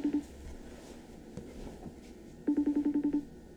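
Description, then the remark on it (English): A FaceTime video call ringing over a phone on speaker held close to a microphone: a brief electronic beep at the start, then a quick run of about eight evenly spaced, same-pitched tones, moderately loud with no talking. “I'll get him on the FaceTime.”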